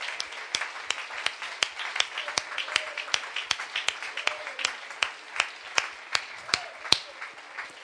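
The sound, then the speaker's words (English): An audience claps their hands to the Lord in a steady, even rhythm, sharp unified hand claps repeating about twice a second over a dense wash of scattered applause, with faint voices murmuring underneath. “Just clap your hands to the Lord one more time.”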